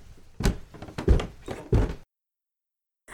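The door of the old Saugus house is pushed open with a cluster of heavy wooden thumps and rattles over about two seconds, then sudden quiet and a faint brief noise at the end.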